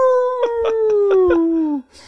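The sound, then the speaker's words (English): A coyote howls in one long, loud cry that slowly falls in pitch, with a rapid series of yips pulsing underneath before it cuts off after nearly two seconds. “And into the woods for a fun fact about coyotes.”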